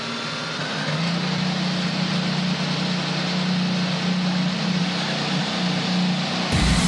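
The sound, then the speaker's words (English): A field of NTT IndyCar Series race car engines starts and idles together at the BitNile.com Grand Prix of Portland, a steady, loud, buzzing drone that swells slightly in the first second and holds constant throughout, with no one speaking. “The greatest drivers in the world, drivers, start your engines!”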